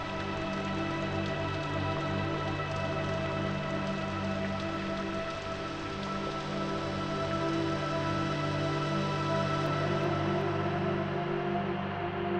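Steady rain patters onto a hard surface, a dense continuous wash of drops that holds an even, moderate loudness for the whole stretch, with no voices.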